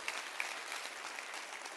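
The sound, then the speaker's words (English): A church audience claps their hands over their heads in a dense, steady wash of applause, many overlapping claps blending into a continuous crackle at moderate volume with no voices standing out. “Clap your hands over your head and say, that's our deliverer.”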